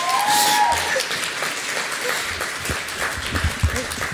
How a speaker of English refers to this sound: Can we just have another like round of applause for Morgo, please? Because that was amazing.